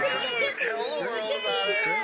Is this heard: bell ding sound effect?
no